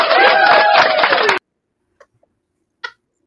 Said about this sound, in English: Yay! Let's clap. Let's clap.